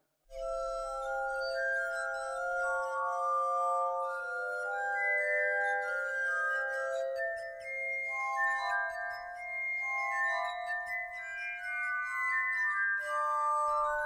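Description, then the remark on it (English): A glass harmonica plays a slow, flowing melody of pure, ringing tones with sustained overlapping notes, steady and fairly loud throughout, with no voices. “composers, including perhaps most famously Mozart, wrote a number of pieces for the glass harmonica”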